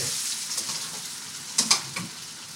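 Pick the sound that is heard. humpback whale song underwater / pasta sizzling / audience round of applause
pasta sizzling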